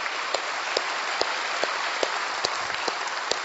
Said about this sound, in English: Boy, that one line is haunting, isn't it? You can clap for it. Yeah, thank you guys.